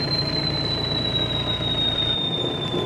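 A peregrine falcon named Perry power-diving from a height to catch its prey: a sustained, piercing high whistle that drifts slowly downward in pitch over a loud, steady roaring rush, with no voices.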